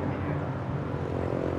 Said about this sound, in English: You see the planes?